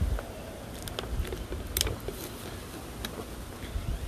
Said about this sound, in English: I just had a couple gulps right there. Of water